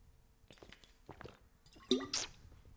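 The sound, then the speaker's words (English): Someone drinks water: a few soft wet clicks, then a squeaky sip and a louder swallow near the end, with no talking. “But I think the first thing I want to start with, just going to get some water here.”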